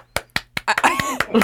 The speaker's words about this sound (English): Go ahead, clap the whole time through.